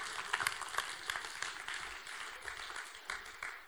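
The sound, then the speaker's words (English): An audience claps together in a steady, dense patter of many hands, moderately quiet, with a few sharper claps standing out early before it evens off, applauding an audience member called up on the platform to play Jesus. “Everyone, let's give him a clap.”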